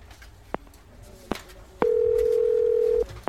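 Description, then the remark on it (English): A few sharp clicks, then a single loud, steady electronic ring tone on a phone line as a call is placed to Horace Hawk, holding for just over a second before cutting off, with faint background noise throughout. “Maybe while the coast is clear here, you can call Horace and see if there are any updates.”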